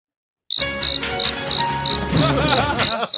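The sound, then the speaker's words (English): Crickets chirp in a steady, evenly spaced series of high, bright pulses, fairly loud, over a dense insect-filled background hum, played as a sound effect. “That was an insulting patch of who turned the crickets on?”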